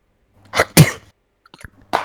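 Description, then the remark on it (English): A sharp cough bursts out twice in quick succession, followed after a short quiet pause by the start of another harsh burst; no one speaks. “Did you just cough?”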